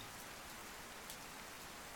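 Steady rain patters on a hard surface, a dense, even hiss of countless drops with no voices, soft and continuous throughout.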